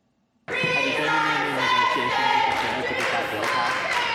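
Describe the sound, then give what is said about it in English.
A crowd of many voices shouts and chants together loudly and steadily after the House session ends, demanding that House Speaker Cameron Sexton resign as reporters try to interview him, a dense roar of overlapping yelling that starts abruptly and continues without pause. “Yeah, they were asking him to resign, or more so demanding that he resign.”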